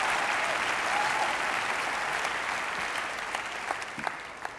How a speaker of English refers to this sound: I wonder if you can this morning just appreciate our musicians and just give them a really good round of applause.